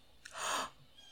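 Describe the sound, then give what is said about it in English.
A single short, harsh chirp from a blue jay right at an apartment window, heard faintly, with no talking around it. “Listeners, it was a blue jay that was right at my window and I tried to get a picture”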